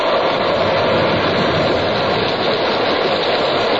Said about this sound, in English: By evening, the Pequod, torn of her canvas and bare poles, struggled as sky and sea roared. The disabled mass, fluttering with the rags of canvas, left by the first fury of the tempest.